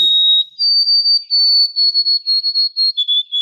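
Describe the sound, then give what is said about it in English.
A white-throated sparrow sings clear, pure whistled notes: a long opening tone, then a steady run of repeated short notes, with the last few dropping slightly in pitch. Loud, with no talking. “So that's a white-throated sparrow, and they sing the poor Sam Peabody, Peabody, Peabody, which is a mnemonic device that people use to help them learn that”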